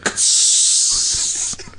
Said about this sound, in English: That was the airlock being released, by the way.